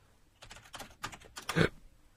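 A quick flurry of keystrokes clatters on a computer keyboard as a name is typed into a Yahoo search, tapping in short uneven bursts and ending with a firmer, louder press, with no voices.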